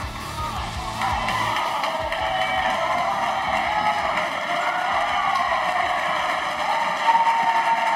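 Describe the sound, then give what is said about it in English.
Dense, sustained applause from Liberal MPs clapping as Justin Trudeau went over and was roughing up fellow MPs, a steady wash of overlapping claps holding at an even, fairly loud level for several seconds with no voices standing out. “That's the sound of Liberal MPs clapping, as Justin Trudeau went over and was roughing up fellow MPs.”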